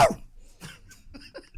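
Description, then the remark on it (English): A few short, sharp dog barks in quick succession, moderately loud, with the first yelp the strongest and brief quiet gaps between the rest. “Yeah, my dog's out.”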